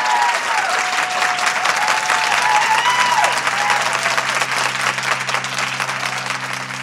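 A crowd applauds steadily, dense clapping spread across the whole clip with no voices, while a faint tone sweeps in early and a low steady hum enters near the end.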